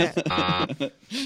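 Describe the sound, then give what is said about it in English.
A voice makes a short, nasal buzzer noise, a harsh droning blast lasting under a second, fairly loud, followed by a brief spoken word. “Well, I'll do my own buzzer, yeah.”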